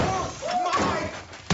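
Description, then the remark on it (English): A laptop thuds hard, with a dull knock partway through and a second, louder crashing impact near the end, over a murky background with faint whistling tones. “That's my laptop.”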